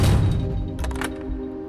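A heavy reinforced steel door slams with a deep, booming thud, followed by a couple of sharp metallic clanks as its deadbolt slides home, its ringing tone lingering afterward.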